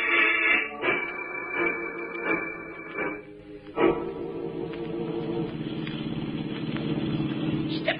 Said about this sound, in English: I'm giving her all she got. This jalopy ain't got wings, you know.